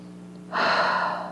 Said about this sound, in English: I'm breathing in deeply.